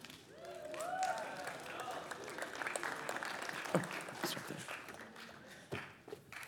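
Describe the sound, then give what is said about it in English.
An audience claps steadily for several seconds, a dense patter of many hands with a few louder sharp claps near the end, and faint voices calling out early on, a round of applause as the speaker brings out Norman, a dwarf orange tree. “So give a big round of applause for my friend Norman.”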